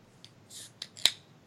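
A beer can of Bell's Two Hearted Ale cracking open for a toast: a couple of sharp metallic clicks and a short fizzy hiss, then one louder snap, with no one talking.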